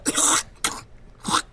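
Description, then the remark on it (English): Three rough, raspy throat-clearing bursts: a longer first one, a short second, and a final one after a brief pause, with no talking in between. “Again, clear my throat.”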